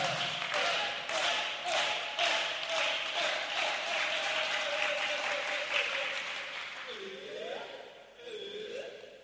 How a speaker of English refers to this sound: Give the Lord a big clap offering. Oh, come on, you can do better than that.